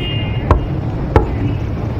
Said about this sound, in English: Rub his eyes and his dust-covered hair and head over to the room that I hope is specified on the piece of paper. We'll give it a knock before attempting to pick it.